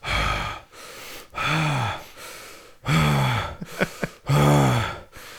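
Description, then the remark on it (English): A voice imitates a man named Yanez breathing heavily for 15 minutes on an audio recording: several loud, drawn-out gasping inhales and exhales in a slow rhythm, with brief sharp sniffs between breaths and no talking. “And Yanez is sitting there for 15 minutes, just breathing extremely heavy.”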